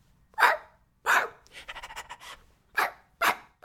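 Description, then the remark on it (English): A person imitates a dog, with loud, sharp barks separated by gaps and a quick run of rhythmic, breathy panting in the middle. “Bow, wow, wow, and woof, woof, woof, and this is how I talk.”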